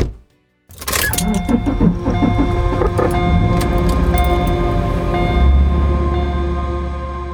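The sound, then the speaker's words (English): After a brief silence, a car engine cranks and catches, then settles into a steady rumble that builds slightly as the vehicle pulls away, driving away from town. No one speaks. “I flipped through the pages as we drove away from town.”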